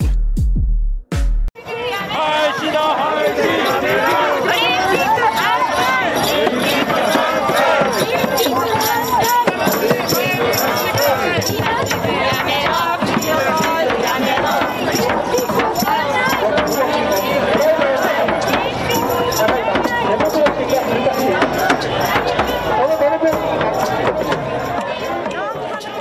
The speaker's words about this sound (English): Those are not cheering fans. What you're hearing is the sound of protesters at the opening of the games, because there were more protesters than there were people watching.